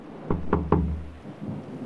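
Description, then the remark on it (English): Three quick, firm knocks on a door in a steady rhythm, solid, followed by a soft background hiss of steady tropical rain. “Somebody at the door.”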